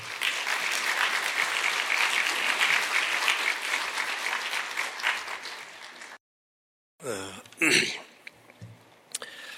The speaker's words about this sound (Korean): 먼 길 오셨는데 우리 한번 크게 박수함으로 우리 환영하면 좋겠습니다.